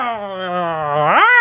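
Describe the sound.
A person voices a drawn-out, wavering yowl imitating a cat, holding a low tone before sliding upward in pitch near the end; the sound is fairly loud and alone.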